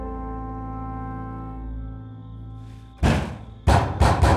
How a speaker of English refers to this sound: Gun to his head, George knocks on the door accordingly.